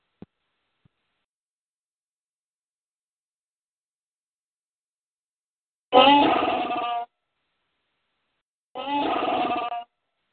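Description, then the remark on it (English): Two loud, harsh Chewbacca Wookiee roars, each about a second long, separated by a short gap after several seconds of near silence, with a raspy, growling, strongly tonal quality. “Chewbacca, man. Love Chewbacca.”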